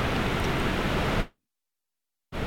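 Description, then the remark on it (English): Heavy rain from a storm drums steadily on a tin roof in a dense, hissing roar, then cuts out abruptly into a second of silence before returning just as loud. “Makes a lot of noise on a tin roof.”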